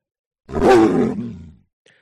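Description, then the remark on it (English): A single loud, rough beast growl swells quickly and rumbles for about a second before trailing off, harsh and throaty with a deep grinding undertone, from a flat creature with black fur, knotted muscles, oversized paws and bony legs, heard alone without any talking. “And it steps and it looks at the two of you and it growls.”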